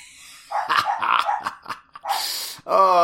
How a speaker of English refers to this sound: Oh, I just hear barking and kids yelling.